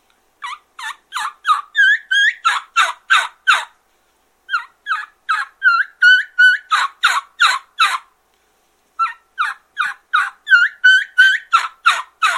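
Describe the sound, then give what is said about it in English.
A turkey hen calls in three bouts, each opening with high squealing whistled notes that build into a run of loud, raspy yelps. Clear, with short silences between bouts and no talking. “You'd hear that squealy front start, go into a couple of note whistle, and then she'd yelp.”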